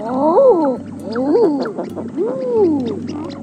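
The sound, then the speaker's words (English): Three eider duck calls in a row, each a soft, rising-then-falling moan that sounds oddly human, like a drawn-out "ah-ooo," with brief gaps between them. “And the weirdly human call of the eider duck.”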